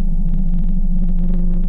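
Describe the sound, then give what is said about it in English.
A blue whale call: a deep, steady droning hum that holds one low pitch throughout, with a faint rapid throbbing pulse running over it and no voices. “This blue whale uses sound to communicate too, and it's possible blue whales are calling to each other across entire oceans, over hundreds or even thousands of miles.”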